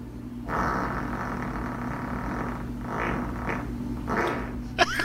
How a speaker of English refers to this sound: Golly. Really? Wow. That's as much of a fart that I could do in probably half a week. How can you hold that much in?